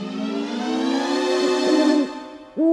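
A long, wavering hoot from Mr. Hoot Owl, held loudly for about two seconds, followed by a short pause and the start of another hoot. No one speaks.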